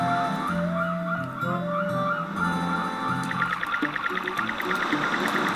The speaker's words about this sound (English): And the junior troop begins swimming into the water. Going past some seagulls.